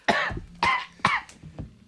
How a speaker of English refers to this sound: Sorry, but like he has a lavalier mic on. I'm good. And he's coughing. You're good. And he did not cover his mouth, by the way. No. He just gave us all a Corona.